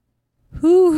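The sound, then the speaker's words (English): After a moment of silence, a person makes a loud, sustained, nasal squawk in imitation of a parrot. The single high call rises slightly and then dips. “can you make like a parrot sound?”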